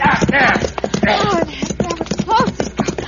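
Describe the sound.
Horse hooves clip-clop in a steady rhythm, running beneath voices talking over them throughout.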